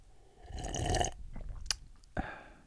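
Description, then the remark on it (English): A wet slurp as someone takes an NPR-style sip of water, followed by a swallow, a brief sharp click and a final lip smack, with no talking. “We're all going to take a sip of water.”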